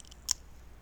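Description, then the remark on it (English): A single short, crisp crunch of someone biting into brittle food while eating, snapping out briefly over an otherwise quiet background with no talking. “Well, I mean, the crunching sounds aren't really helping.”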